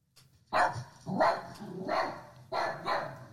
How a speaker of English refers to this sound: I think that's your dog, bro. That's not her.